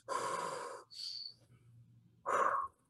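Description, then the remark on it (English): A voice imitates heavy, labored, overheated breathing: a long loud exhale, a sharp hissing inhale, then another forceful huffing breath after a brief pause. “And I'm just gonna be working away, and as I'm watching the clock, I'm just gonna start, like, ooh, oh, so warm. Oh, man. Start, like, breathing.”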